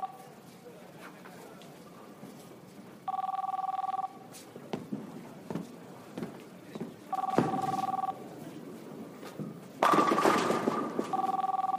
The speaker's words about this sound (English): So they go back to the bowling alley, and you just see the dude sitting by himself on like the back bench. He's not even sitting up like around the table. Right. And he's holding the phone, and it's just ringing.